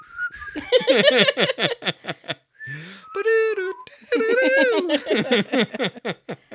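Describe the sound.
Someone whistles the lively, bouncy NBA theme tune, the melody rising and falling in quick phrases, with a few breathy, voice-like notes mixed in.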